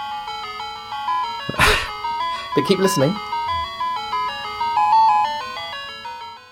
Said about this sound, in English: Yeah, but the thing about Bach is that it works very well in any digital beepiness.